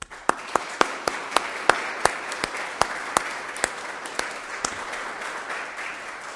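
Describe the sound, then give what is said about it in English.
A crowd at a first Holy Communion Mass applauds the boys and girls steadily, a dense wash of many hands clapping with a few sharp, louder claps standing out at irregular moments throughout. “And we're going to give you a big round of applause just now.”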